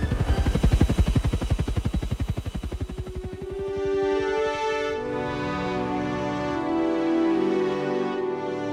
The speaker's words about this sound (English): the evac helicopter started making its way up and out, the two men trailing behind like sinkers on a fishing line. And then it proceeded to get the hell out of there, about as close to the speed of heat as a shot-up helicopter could go.